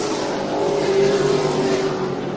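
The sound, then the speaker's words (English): Race car engines roar loudly and steadily for a few seconds as the cars flash down the front stretch, a dense mechanical drone with a sustained whining pitch. No one speaks. “As they flash down the front stretch, the nine car looking real good.”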